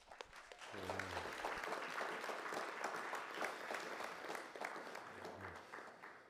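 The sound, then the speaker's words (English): A crowd applauds steadily for several seconds to welcome a speaker, a dense wash of many hands clapping at fairly even loudness, with a faint low voice briefly audible near the start and again near the end. “We'll see if you want to clap when I'm done.”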